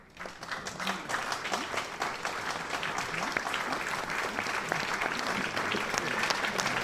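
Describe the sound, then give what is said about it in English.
A crowd's applause sound effect: dense, steady clapping that swells in quickly and holds at an even level for about seven seconds, with no voices over it. “Oh, that part, and cue applause.”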